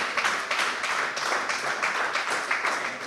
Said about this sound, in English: Yeah, and that deserves a round of applause, I think.